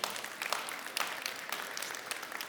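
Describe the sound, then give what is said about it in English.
A crowd applauds steadily, a dense rattle of many hands clapping with scattered sharper claps poking through, fairly even in loudness throughout with no voices. “You can clap for that.”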